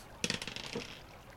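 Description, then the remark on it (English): Percentile dice clatter across a table in a quick burst of sharp, bright clicks that bounce and rattle for under a second, then settle into quiet. The roll follows a failed charisma save in a game, and the dice come up 84. “Please roll a percentile dice.”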